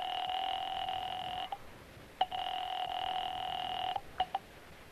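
A telephone being dialed: a steady two-pitch electronic tone holds, breaks off, returns for a longer stretch, then ends in a couple of quick beeps. Clear, with no voices.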